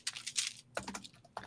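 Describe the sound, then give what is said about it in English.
Soft, rapid clicking of keys on a computer keyboard, a quick flurry of taps, a brief pause, then a few more strokes, with no one talking. “So I got a couple movies, and take your hands off your keyboard.”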